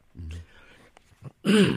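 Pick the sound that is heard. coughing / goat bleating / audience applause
coughing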